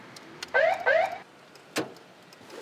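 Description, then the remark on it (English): A parked police cruiser idles in a shady spot near an intersection with a low, steady engine hum, broken by two quick electronic chirps in a row and then a single sharp thud. “We park and idle in a shady spot near an intersection”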